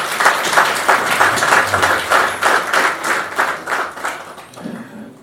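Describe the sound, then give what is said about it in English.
A crowd applauds the sisters who prepared a meal, dense clapping with a loose rhythmic pulse roughly a few beats per second, fairly loud and steady, tapering off at the end. No talking over it. “Just a round of applause for the sisters that have prepared a meal for us.”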